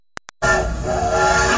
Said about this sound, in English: All aboard. Get on board this trip and ride this train. Of course, you know this train.